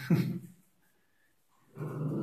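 A dog gives a short, sharp bark, falls silent for a moment, then lets out a longer, rougher bark that sounds almost like a growl.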